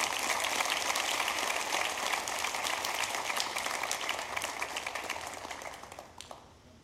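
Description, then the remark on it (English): An audience at Eagle Heights claps for a visiting pastor in a dense, sustained wash of applause that holds for several seconds, then thins and fades toward the end. No one speaks. “Come on, let's give Jesus a hand clap.”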